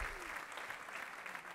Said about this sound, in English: No, I'm just saying that crowd, man, they won't stop. They're still cheering for you, but it's very faint. Yeah, it's just my mom in the back.